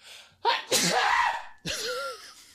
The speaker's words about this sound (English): Don't sneeze in the mic.